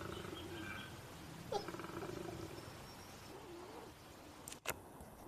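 A male koala bellows, a deep, rumbling, snore-like roar with rapid pulsing grunts that carries on loudly for several seconds, broken by a couple of sharp snorts near the end.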